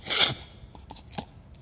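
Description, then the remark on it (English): A loud, abrupt slurp of coffee during a coffee cupping tasting, a hissy rush of air sucked in for a split second, followed by a few faint wet clicks and mouth sounds with no talking. “He takes it, and he says, we're going to slurp, and then we're going to spit it out.”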